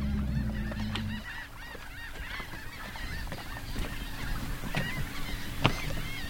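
A dense, constant chorus of overlapping shorebird calls at a rookery on Green Island in the Laguna Madre, a hypersaline coastal lagoon. Many squawking and honking cries are layered together, with a low boat engine hum fading out at the start.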